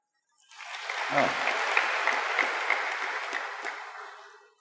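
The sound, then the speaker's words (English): A crowd bursts into applause, a dense, steady wash of clapping that holds for about four seconds before thinning out and fading away, with no talking over it. “So all those who clap, we know they are failures.”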